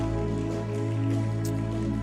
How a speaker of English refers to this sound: Oh, if you are clapping, please clap properly. We are clapping unto the Lord. Amen.